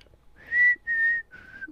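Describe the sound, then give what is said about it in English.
A short whistled melody from a 2011 pop hit: three sustained, clear notes, the first two rising slightly and the last a bit lower, whistled alone with no talking. “Those were some of the biggest hits of 2011, and they all have whistling.”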